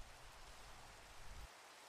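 Steady rain falls in a soft, continuous hiss with a low rumble underneath that drops away near the end. It's quiet and even throughout, with no voices.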